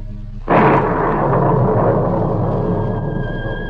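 At night, with a flash of lightning lighting up the sky, a sudden loud thunder crash bursts in after a brief quiet moment, then rolls on as a deep, sustained rumble that slowly fades. No voices are heard.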